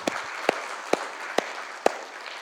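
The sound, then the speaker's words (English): An audience applauds in a steady wash of clapping, welcoming service members back from deployment, with a few louder, evenly spaced claps standing out about twice a second. No one speaks. “Yes, another round of applause I think is definitely in order.”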